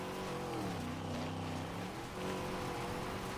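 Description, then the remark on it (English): A loud, steady video game car engine drone fills the whole stretch as the car drives from asphalt onto a dirt patch, its pitch dipping and rising as the vehicle shifts speed, with a gritty rumble underneath and no voices. “Now we're driving on a dirt patch.”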